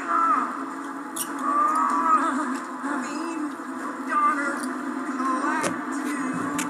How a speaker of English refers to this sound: put the balloon down!